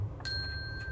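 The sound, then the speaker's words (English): A single bright page-turn chime for a read-aloud of the book Home by Carson Ellis rings out clearly, its pure tone sustaining and slowly fading over a soft low hum. “When you hear the chime, turn the page.”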